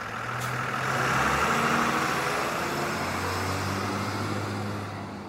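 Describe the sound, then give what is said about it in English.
A bus engine rumbles steadily at idle at a bus stop, a low continuous drone with a broad wash of traffic-like noise, holding fairly constant throughout with no voices. “The bus seems to circle around and around, and by 6:30, when the entire bus is empty, you're back where you started, the bus stop.”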